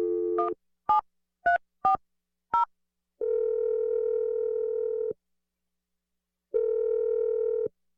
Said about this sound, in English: All right. Here we go. I'm going to dial the number and let you make your call.